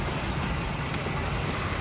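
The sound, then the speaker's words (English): The rough engine of an old, breaking-down car with its bumper coming off rumbles steadily as it drives past, with faint rattling clunks repeating about every half second over the low drone. “Her car sucks. It's, like, breaking down.”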